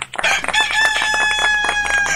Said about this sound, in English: Hi, everyone. I'm Mayor …, and that's my rooster, Big Red. He looks just like a gunslinger in a spaghetti western.